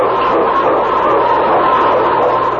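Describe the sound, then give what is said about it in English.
A loud, dense chorus of sled dogs in the Yukon, including King, lead dog for Sergeant Preston of the Northwest Mounted Police, barking and yapping together, the overlapping barks merging into a continuous clamor with no pauses and no voices. “It's King, swiftest and strongest lead dog of the North Country, blazing the trail for Sergeant Preston of the Northwest Mounted Police in his relentless pursuit of lawbreakers.”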